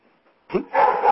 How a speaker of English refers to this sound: There's your dog. He knows. He knows.